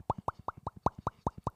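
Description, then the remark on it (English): A drink glugs out of a bottle in a quick, steady run of about eight hollow gulps, each with a short rising pitch, with no talking over it. “Go ahead, put a little splash.”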